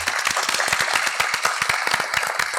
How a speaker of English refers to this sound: And a quick extra round of applause